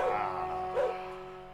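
A dog, Mahler, gives two short barks, about half a second apart, clear, over a steady humming tone in the background.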